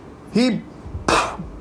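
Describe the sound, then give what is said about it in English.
During a church sermon, a voice imitates a sneeze meant as God's sneeze parting the Red Sea: a rising, voiced "ah" intake, a brief pause, then a loud, breathy, hissing "choo" burst that quickly fades. “He sneezed and the water parted with a sneeze.”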